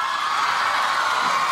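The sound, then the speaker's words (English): A large crowd cheers and applauds in a steady, dense roar of clapping and shouts that holds at the same loud level throughout, with no speech over it. “Wow, what a great crowd. Give it up yourselves.”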